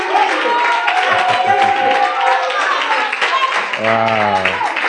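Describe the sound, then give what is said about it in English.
An audience claps steadily for several seconds for their pastor and the church shepherds, a dense, continuous wash of applause with voices calling and cheering over it. “I want us to clap for our pastor, all the shepherds, everybody.”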